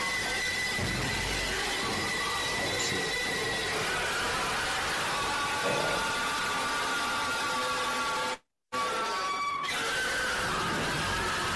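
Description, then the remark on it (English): Loud, shrill pig screams and squeals overlap continuously in a gas chamber slaughterhouse, a dense chorus of distressed animals that cuts out briefly near the end before resuming. “Now, how haunting are those screams?”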